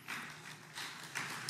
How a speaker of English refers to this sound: That's a bad little golf clap for that. Come on now.